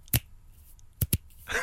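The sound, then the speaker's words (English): Three finger snaps, one on its own, then a quick pair about a second later. The snaps sound somewhat dull and muffled, without any talking. “It's like someone has taken the treble off your click.”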